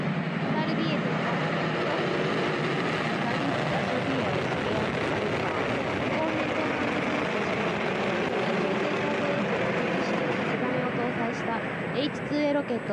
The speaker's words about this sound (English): We have a liftoff of the H-2A launch vehicle number 37 carrying Shikisai and Tsubame from the JAXA Tanegashima Space Center at 10:26:22 a.m. on December 23rd, 2017, Japan Standard Time.